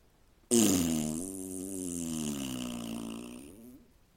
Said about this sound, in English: The bull looked into Ray's eyes and waited patiently. Without making a sound, Ray nodded his head, and the bull closed his eyes and blasted a monstrous fart.